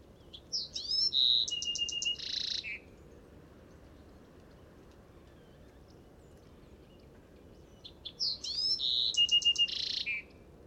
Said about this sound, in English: I must admit, the Buick's wren does indeed sound much like a song sparrow, but song sparrows don't breed down here in southern Texas.